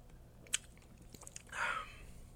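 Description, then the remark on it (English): A quiet sip of black cherry seltzer: a sharp click, a few small wet ticks, then a short hissing slurp with a faint bubbly whistle. “that's the worst seltzer. Yeah, probably. That we're about to take a sip of.”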